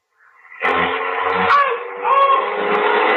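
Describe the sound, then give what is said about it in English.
A car engine turns over and catches, then revs steadily with rising whines, loud, with no voices over it; the car bumps into a man as it starts. “when you started the car, you bumped into him.”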